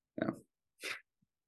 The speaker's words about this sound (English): Bless you